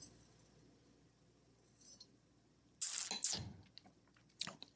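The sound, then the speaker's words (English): A wine glass clinks faintly, then a brief slurping sip of New Zealand Sauvignon Blanc with airy hiss, followed by a small glassy tap, otherwise quiet with no talking. “Gonna take another sip just because, you know, why not?”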